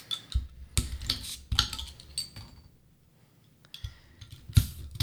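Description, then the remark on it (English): A keychain bottle opener works at a glass bottle of sour beer: jingling keys, a series of sharp metallic clicks and clinks, a quiet pause, then a louder snap as the cap comes off. No one speaks. “Getting out my bottle opener on my keychain.”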